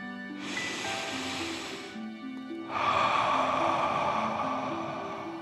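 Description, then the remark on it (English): Two long, airy deep breaths during a guided breathing exercise: a slow inhale followed by a louder, drawn-out exhale, against soft, gentle background music with no talking. “As you continue to float, let's take three more deep dragon breaths. Deep breath in and out.”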